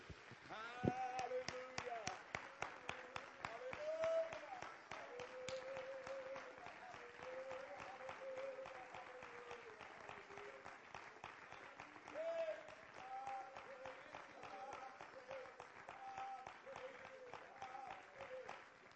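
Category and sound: crowd, audience clapping hands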